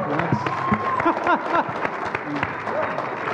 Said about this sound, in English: I was like, when people clap, you got to just stop.